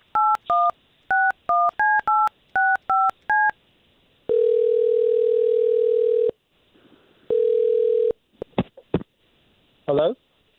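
A quick series of about ten touch-tone dialing beeps as a man's phone number is called, followed by two long, steady ringing tones separated by a pause, then a few sharp clicks as the line connects.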